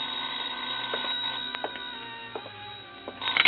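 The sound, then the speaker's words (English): A telephone rings with a steady, tinny bell tone over a few seconds, heard alone at moderate volume with a muffled, narrow quality and a louder rattle near the end. “I was about to go downstairs when the phone rang.”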